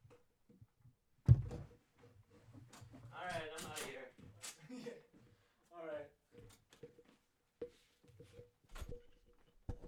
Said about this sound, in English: Doors closing.